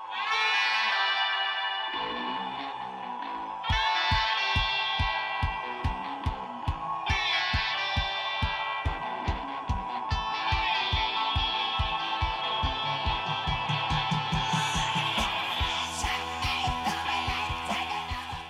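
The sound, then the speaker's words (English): A rock song's breakdown section: a gritty guitar riff over steady, pounding drum hits, loud and driving, with bright sustained distorted tones layered on top and no singing. “So here's kind of that breakdown section.”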